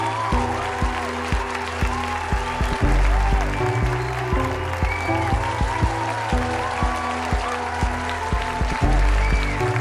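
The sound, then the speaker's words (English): A crowd applauds and cheers loudly for about ten seconds, a dense, steady wash of clapping mixed with sustained tones, and no one speaks. “The crowd goes wild.”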